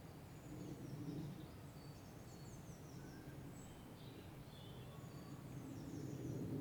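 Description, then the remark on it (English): Faint birdsong of scattered chirps and short trills drifts over a steady low outdoor rumble, like wind across open ground. Nobody speaks. “You can feel it with the bird song.”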